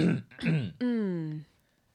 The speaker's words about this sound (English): So let me clear my throat before this.